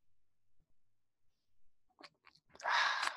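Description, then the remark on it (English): A sip of a peach nectarine sports drink: after near silence, a few faint wet mouth clicks lead into a short, loud slurping gulp, with no one talking. “So grab your favorite sports drink and join me now for this simultaneous sip.”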